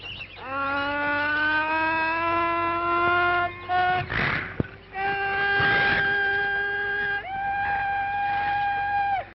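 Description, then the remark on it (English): A Tarzan jungle yell: a loud, sustained human cry in three long phrases, the voice holding rich tones, then warbling and breaking sharply between high and low pitches like a yodel. “Now, Maybe you've never watched anything Tarzan in any way, shape, or form, but I will tell you this, you probably know the Tarzan yell.”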